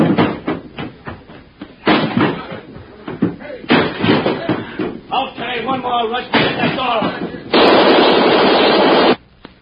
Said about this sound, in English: Yeah, but what are you going to do? Hold him off with his Tommy gun.